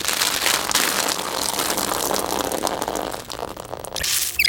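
A dress zipper is drawn up in a long, raspy, crackling run lasting several seconds, ending with a brief brighter whir. No one speaks.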